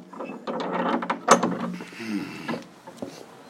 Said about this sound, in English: Close the gate, so.